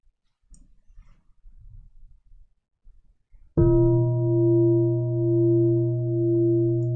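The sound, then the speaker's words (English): A single gong strike rings out after a few seconds of faint rustling, then hums on with a deep, steady, slowly pulsing resonance until the end. “When you hear this gong sound, how do your mind and body respond?”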